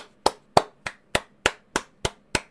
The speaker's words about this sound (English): I don't know if that picked up in Discord, but I was clapping.